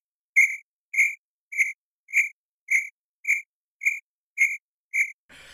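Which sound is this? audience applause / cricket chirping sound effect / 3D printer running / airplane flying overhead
cricket chirping sound effect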